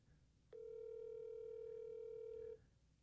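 A single steady electronic phone ringing tone of an outgoing call sounds for about two seconds, clear with a faint buzzy edge, then cuts off into quiet background.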